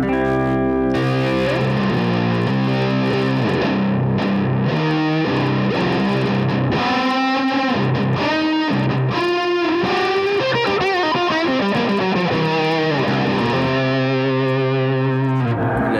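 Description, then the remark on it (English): Electric guitar played through an overdrive pedal and amp with a very high amount of gain, a fizzy, fuzzy distorted tone with sustained chords and bending melodic lines, loud and steady with no talking. “I like that fizzy, kind of fuzzy sound.”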